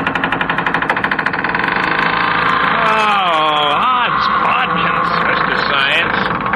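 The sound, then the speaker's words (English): A metal hinge is worked back and forth to help lubricating oil soak in between the layers of metal, as part of an experiment: a loud, rapid rattling grind gives way to drawn-out squeaks and creaks that slide up and down in pitch with each swing. “And the thing we have to do next is help the lubricating oil soak in between the layers of metal by working the hinge back and forth a few times.”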